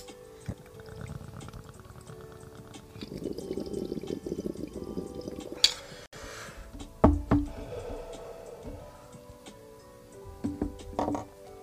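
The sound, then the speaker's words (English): Low, steady bubbling of water in a bong as someone takes a hit for a few seconds, followed by a sharp click and a couple of dull knocks, with no one talking. “Like, but I'm going to take a hit of the bong first before we get into story time.”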